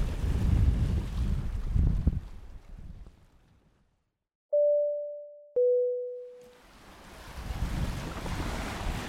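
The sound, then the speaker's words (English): Strong wind roars and buffets across an open breakwater, broken midway by a short silence and two steady electronic beeps before the loud gusting returns. “I was standing out kind of on the breakwater. Whoa, so windy.”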